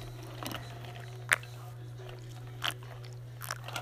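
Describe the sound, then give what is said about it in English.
Someone drinks Arizona green tea during a break after cleaning a deer, with a few short, soft gulping sounds spaced irregularly over a steady low hum and no talking. “Let's take a break after cleaning that deer and getting a little dry throat and have some of our Arizona green tea.”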